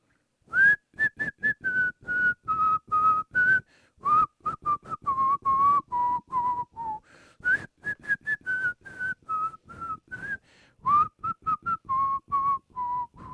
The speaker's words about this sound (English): Who was in charge of the whistling while I was gone? I whistled my ass off.